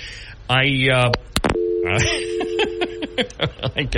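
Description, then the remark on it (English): A payphone call cuts off with a few sharp clicks, then a steady electronic line tone drones for about two seconds while a voice talks over it. “I guess he ran out of coins.”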